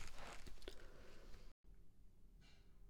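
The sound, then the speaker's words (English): Paper crackles and rustles as it is crumpled and torn, a busy burst of dry crinkling for about a second and a half, then an abrupt cut to softer, scattered rustling. “Bloody paper, I tell you.”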